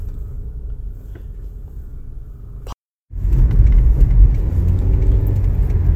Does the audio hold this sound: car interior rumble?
yes